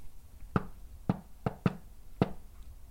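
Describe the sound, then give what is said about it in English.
Five sharp knocks on a hard floor in a playful rhythm, with a quick double rap in the middle, like the opening of a shave-and-a-haircut pattern. Fairly loud, with no other sound. “All it'll take is a knock with some rhythm, and that'll prove that there's nothing there.”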